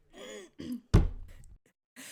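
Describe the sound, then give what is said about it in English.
A single loud cough bursts out sharply, preceded by a couple of short breathy throat sounds, then a faint rustle after a brief pause. No one talks. “I got to tell you, you did not put it on mute. Now you're muted. Oh no. It's a great cough.”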